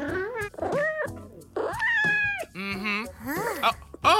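A run of about six expressive meows in close succession, loud, with rising and falling pitch and a few drawn-out, whiny calls toward the end.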